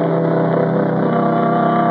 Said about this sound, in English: Sonny Wyman dropped me in front of it, then took off in a cloud of dust and exhaust gas.